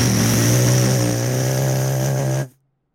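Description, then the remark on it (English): A voice imitates a bus rolling over a rumble strip with a loud, steady, rough buzzing drone lasting about two and a half seconds, then cutting off abruptly into silence. “We hit that zipper. Oh, dude. So rough. It's like...”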